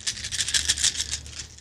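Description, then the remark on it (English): Sixteen dice rattle continuously in tiny cupped hands, a dense, bright clatter of rapid overlapping clicks pulsing in quick shakes, fairly quiet, with no voices over it. “Tiny hands and lots of dice.”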